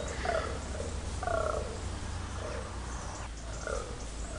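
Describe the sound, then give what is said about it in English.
A buck fallow deer, rutting on a hill, grunts four times at a steady, roughly one-second rhythm, each grunt a short, low, belching burst over a constant hiss of background noise, with no talking. “It's the grunting of a buck fallow deer.”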